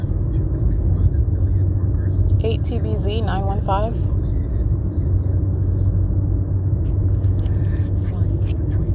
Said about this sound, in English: They're all monitoring as we drive up and down the street in their businesses and their homes, on bicycles, on foot.